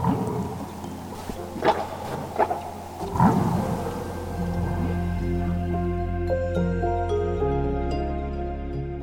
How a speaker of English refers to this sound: listen to the whales, gave me so much insight into how these animals were interacting with each other. Because you can hear them countercalling back and forth.